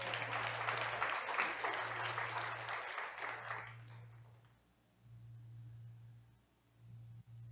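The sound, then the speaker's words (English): An audience claps during a sermon in a dense, steady burst for about four seconds, then the applause dies away quickly, leaving a low electrical hum droning underneath. “That's a good time to clap right there.”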